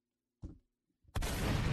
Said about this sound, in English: Y'all know I don't know these buttons. I be pressing any button sometime. But let's give him a gunshot, too.